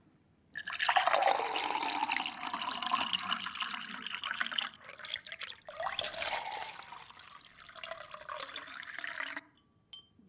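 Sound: water poured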